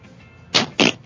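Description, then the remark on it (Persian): Three short, loud, raspy fart-like blasts, each about a quarter second, following a quiet stretch. The bursts come in quick succession with brief gaps and no talking. “خیلی باحال بود، بیچاره گوز داشت، از ته دل حرف میزد و از ته دل.”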